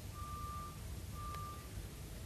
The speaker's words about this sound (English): You hear the beeping.